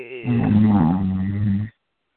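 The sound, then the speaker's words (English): A single drawn-out, buzzy snore from a sleeping woman rumbles for about a second and a half, fairly loud and alone, then stops abruptly into silence. “baby, snoring, honey.”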